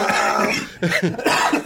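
A close, forceful cough bursts out in a couple of rough, raspy spasms, loud and unaccompanied by speech, trailing into a throaty clearing.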